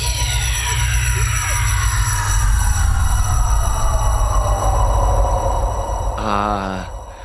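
Hands running through hair make a loud, sustained rushing whoosh over a deep rumble, with whistling tones that slide downward in pitch and a brief warbling flutter near the end.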